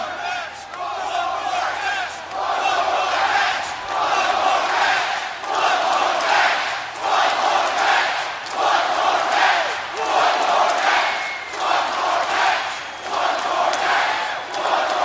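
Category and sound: crowd, wrestling arena crowd cheering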